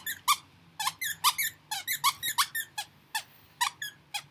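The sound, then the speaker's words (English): A Kelpie dog named Eva lets out a rapid series of high, whiny squeaks and yelps, repeated in uneven bursts over several seconds, with no talking. “she's a Kelpie, and she's beautiful. Aren't you, Eva? That means yes.”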